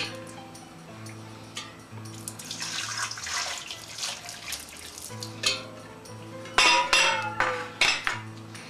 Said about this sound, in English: then I have to take boiling water. Pour the boiling hot water over the turkey. This way you're sure it's clean.